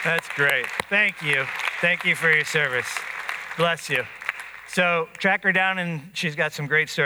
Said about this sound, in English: So we should all stand and applaud for that.